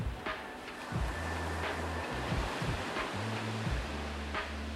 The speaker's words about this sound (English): You're sitting in the warm sand under a tall palm tree, listening to the waves crash against the beach. Watch the waves coming in and out, in and out.